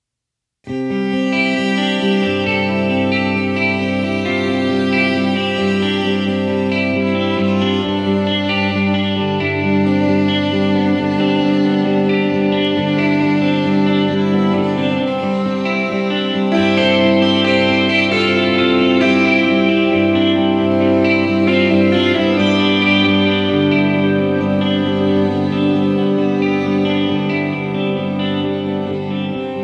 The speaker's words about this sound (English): So this one I love. It's kind of a folky, a little bit folky. It's just this mellow jam,